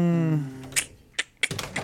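A brief voiced murmur fades out, followed by several crisp snips of scissors trimming hair in a bathroom, spaced irregularly over about a second.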